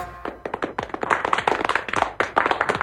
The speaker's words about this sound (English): What a great bunch of people. Let's hear the masses applaud.